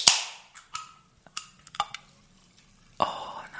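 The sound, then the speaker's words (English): A drink being opened: a sharp crack followed by a fizzy hiss, a few light metallic clicks and taps, then a second burst of hissing fizz near the end. No one speaks. “Before you tell the story, let me open my drink and save them drinking. So I want to get the sound effect.”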